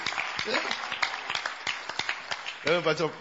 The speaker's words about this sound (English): And this man looks like a man of God. Clap for this man of God. He's a man of God.